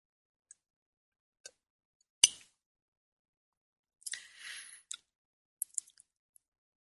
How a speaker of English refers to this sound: I'm going to take a sip of my espresso here.